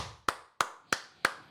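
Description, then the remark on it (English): Five sharp hand claps in a steady, evenly spaced rhythm, a round of applause for North Carolina, each a crisp smack with a brief ring, heard alone with no voices. “We're all going to give a round of applause for North Carolina.”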